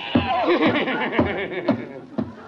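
A horse inside a house whinnies with a wavering, shaky neigh, loud, while heavy thuds land about every half second like stamping hooves.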